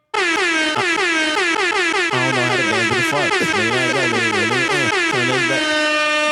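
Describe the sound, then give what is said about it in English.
A loud air horn sound effect blares in rapid repeated bursts for several seconds, its bright, brassy harmonic tones stacking and wavering with no talking over it. “We'll do the air horn.”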